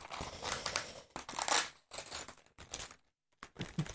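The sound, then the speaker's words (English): Loud crinkling and crumpling of paper wrapping being torn off a package, in irregular bursts, with a sharp rip partway through and a brief pause near the end before the rustling resumes. The package holds a baking mould for Darth Vader cakes. “Paper.”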